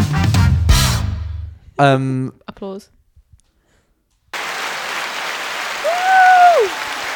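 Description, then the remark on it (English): A few brief voiced sounds, then a pause, then a burst of applause sound effect: dense, steady clapping filling the second half, with a gliding whistle-like tone rising over it near the end. “Applause.”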